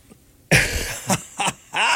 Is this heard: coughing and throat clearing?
yes